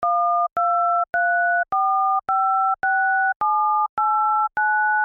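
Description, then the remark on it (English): Nine touch-tone phone keypad beeps for the numbers 1 through 9 in a steady sequence, each a clear two-pitch electronic tone held about half a second with brief gaps, loud with no voices. “Here are the numbers 1 through 9 on a TouchTone phone.”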